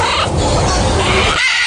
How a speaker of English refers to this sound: Ah, that hurts. That's a macaw parrot, so it is. The large, strong, curved beak and the powerful, agile toes that grasp like human hands. Loud, screeching, squawking.